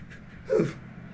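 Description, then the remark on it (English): A single brief meow from a shelter kitten picked up at a pet store, a short high squeaky cry that rises and fades within a fraction of a second, standing alone against a faint background hiss. “There were shelter kittens, so I picked one up.”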